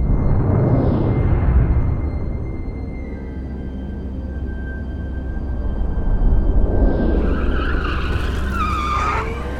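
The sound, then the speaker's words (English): Self-driving smart cars roar and skid with loud, sustained tire squeals as they chase a car in front, screeching bursts rising near the start and again toward the end over a constant rumbling engine and road noise. “Those are self-driving smart cars, still up and running.”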